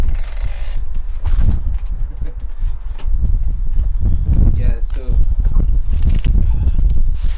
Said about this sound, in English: As you can hear, we just zipped up and we're now Yeah. walking out the door.